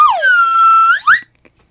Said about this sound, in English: And then a fucking slide whistle.